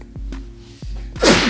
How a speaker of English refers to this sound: Alright, so you know why you sneezed right then and there, right?